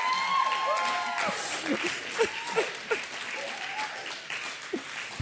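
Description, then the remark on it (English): An audience breaks into steady applause, a dense wash of clapping that holds for several seconds, with a few scattered whoops and vocal cheers rising over it. “That deserves a round of applause in and of itself.”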